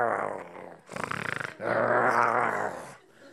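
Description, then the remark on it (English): A person imitates their angry pet dog's growl: a low, rough snarl that rises into a rapid, rattling burst, then swells into a long, loud guttural growl before trailing off. The voice is forceful. “You were just a Disney dog, and now you are this evil little, you know, wolf doggy."”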